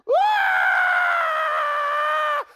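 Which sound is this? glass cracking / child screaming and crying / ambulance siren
child screaming and crying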